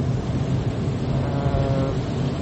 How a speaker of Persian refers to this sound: به صدای بارون یه مقدار زیاده، امیدوارم که پادکست قابل شنیدن در بیاد